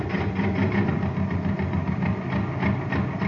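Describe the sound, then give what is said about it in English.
A jet cycle's small engine in the Space Patrol radio program putt-putts steadily on ordinary fuel, a low, rumbling idle with a faint rapid chug running through it at an even loudness for the whole stretch, with no voices over it. “Listen to this jet cycle.”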